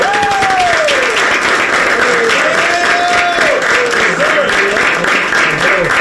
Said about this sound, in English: First off, can we give a round of applause to the staff?